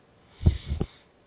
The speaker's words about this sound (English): Oh, sorry about that. Little brief pause I was having. Where'd you go? I was having a sneeze. Ah, bless you.